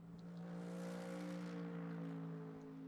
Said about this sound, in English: And heading down now through the hog pen and across the start-finish line, the sound of the Merc, the big Merc V8, rumbling by.